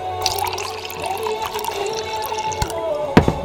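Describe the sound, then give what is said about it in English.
A drink pours steadily into a glass, a rising gurgling stream with small splashes and clinks, ending in a sharp tap near the end; moderately loud, no talking. “And let's pour a drink.”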